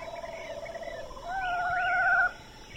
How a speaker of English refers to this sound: So these are more Winnies of this screech owl. So it's a nice chunk of audio. It gives you quite a bit of time to listen to the sound.